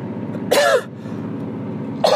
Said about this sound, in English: I still got the cough. This fucking cough lasts forever. And it's a little bit in the chest too.